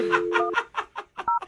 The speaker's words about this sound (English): Okay, well, let's pick up the tempo and just dial the phone number right now. No more talking, just dialing.